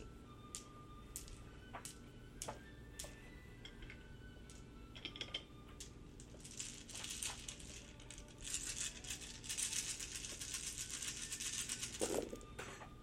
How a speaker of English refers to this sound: You have two automatic successes, so add five to your damage and roll. So 10, you should be rolling 15 dice.